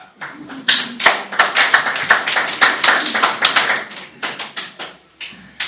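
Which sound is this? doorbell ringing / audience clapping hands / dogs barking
audience clapping hands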